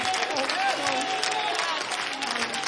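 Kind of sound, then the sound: crowd, audience clapping hands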